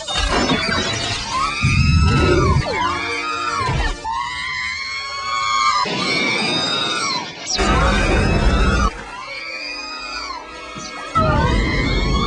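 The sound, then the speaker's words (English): A voice imitates R2-D2 screaming in panic as buzz droids are killed off: rapid, warbling high-pitched electronic shrieks and whistles sliding up and down in bursts over about twelve seconds, loud and frantic with brief gaps. “And then there's one point when they're killing off the buzz droids, and R2's like, R2.”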